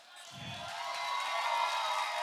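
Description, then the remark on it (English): An audience claps in a dense, steady wash of applause that swells slightly over a couple of seconds, with a brief low vocal sound from the crowd near the start. “Let me continue before you, like some of you are going to stop clapping.”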